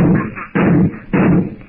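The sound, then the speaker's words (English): Three loud, booming revolver shots, fired by a woman holding the revolver at arm's length into a snake's head, ring out at an even pace, each blast dull and muffled with a short rumbling tail before the next. “Again and again, the bullets tear into the repulsive head.”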